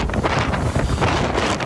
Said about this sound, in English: This extraordinary video shows desperate people who leaped into the water to escape the Maui fires. You can see the red-hot embers in the air, adding to the nightmare, raging wind whipping the water.